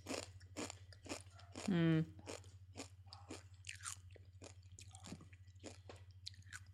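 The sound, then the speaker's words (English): Crunching as someone chews small, vibrant orange pieces of a spicy crispy fried fish skin snack, a little chewy, with steady rhythmic crackly bites throughout and a brief hummed voice partway through. “Not as crunchy as the previous fish skin. The skin's, I think, a little more chewy.”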